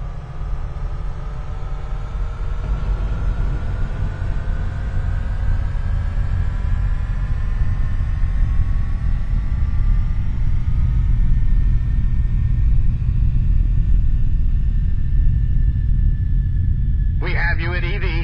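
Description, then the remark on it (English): Spacecraft engines firing during boost: a deep, steady engine roar with heavy low rumble holds throughout, while a faint whining tone slowly climbs in pitch; a short crackly burst cuts in at the very end. “Prepare for boost.”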